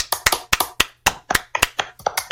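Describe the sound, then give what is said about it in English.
A short burst of applause: a small group clapping at a quick, slightly uneven pace, sharp crisp slaps overlapping now and then, steady in loudness with no voices. “Guys, round of applause.”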